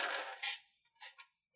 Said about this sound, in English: Oh my god. I've done it. I've done the worst. You did it. I've done the worst thing I could possibly do and drop the dice.